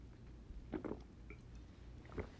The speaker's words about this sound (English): Let me take a sip.